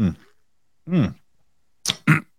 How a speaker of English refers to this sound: Clear my throat.